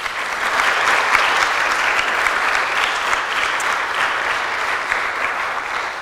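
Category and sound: crowd, audience applause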